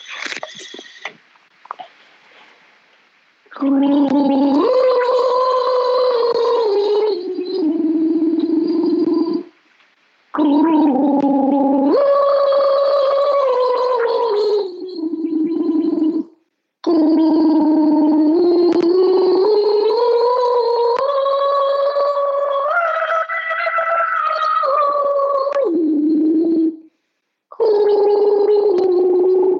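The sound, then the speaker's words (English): Loud, bubbling gargling of too much water in the mouth, in several long bursts separated by brief pauses, the throaty voiced tone wavering and rising in pitch as each burst goes on. “I've got too much water.”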